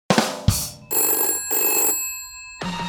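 A telephone rings in bright, metallic bursts: a couple of quick strikes, then two sustained trilling rings separated by a brief gap, and another ring starting after a pause. No one speaks.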